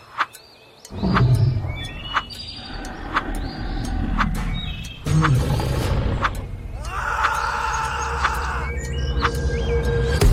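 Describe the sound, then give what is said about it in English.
A grizzly bear in a jungle roars in two long, loud, deep bursts of rumbling growls, while thin high chirps and whistles sound faintly above throughout. “You make your way through the jungle and notice a grizzly bear nearby.”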